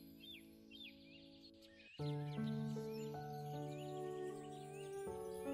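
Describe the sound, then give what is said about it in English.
Soft birdsong of birds singing their nighttime songs in trees, scattered chirps and short trills repeating throughout, sits gently beneath sustained, calm musical tones that swell slightly partway through. No one speaks. “And all around, You could hear the birds softly singing their nighttime songs, and that was the end of the fifth day.”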